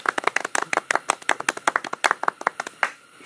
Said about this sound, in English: Okay. Wow. Round of applause.